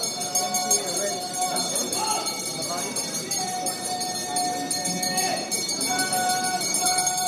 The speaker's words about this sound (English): Well, the first thing you hear at the crack of dawn is the ringing of some incredibly loud bells to call buyers over to the area where the auctioneers are working.